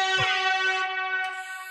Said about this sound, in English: Call the town crier. Alert all those who live within. Sound the horn. Ring the siren.